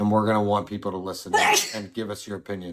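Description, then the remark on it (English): A woman, the speaker's wife, sneezes once, a sharp, loud burst in the middle of steady talking by a man, whose speech continues right before and after it. “And my wife is sneezing.”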